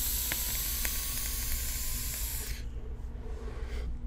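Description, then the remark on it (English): A vape coil sizzles in a steady, bright hiss for about two and a half seconds, with a few faint crackling pops, then cuts off abruptly into a low, quiet background. “It drives me so nuts that I feel like I need to take a toot here.”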